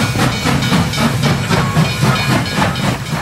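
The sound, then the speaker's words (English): Loud, continuous steam hiss with rhythmic chuffing bursts, like a steam train puffing, steady throughout with no voices; a sound effect on 3AW Football introducing the Tone's Twist segment. “No, it's not a teak train, it's a tone train.”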